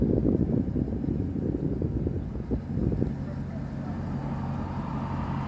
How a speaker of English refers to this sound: Oh, no, that was that Toyota that was doing the burnout. That was funny.